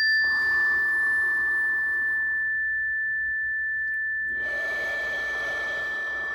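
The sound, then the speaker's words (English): A slow, deep breath drawn in and released during a guided breathing exercise, airy, with a quiet pause between, over a steady high electronic tone humming in the background. “We're going to inhale wide, exhale tall, just stretching it up, nice, inhale wide, fill it up, exhale tall, one more of those.”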